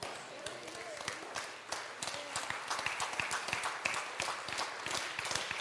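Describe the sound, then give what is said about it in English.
A crowd claps steadily for several seconds, a dense patter of many hands at moderate loudness, with indistinct voices mixed underneath. “I don't know why everybody's not clapping right now.”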